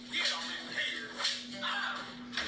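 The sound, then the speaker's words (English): Several sharp whip cracks snap out at uneven intervals as a man gets whipped in a Western-style scene, each a bright, high-pitched burst over a steady low hum, with no voices. “They hit him. Yeah, he gets. He gets whipped.”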